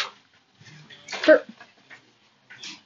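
A short, low, croaky burp, followed by a louder breathy vocal burst and a few quieter mouth noises, with no clear words spoken.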